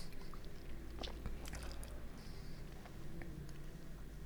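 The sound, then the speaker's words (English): Soft mouth sounds of someone sipping a drink, with a brief cluster of small wet slurps and clicks in the middle over a low steady hum. No one speaks. “Take another sip.”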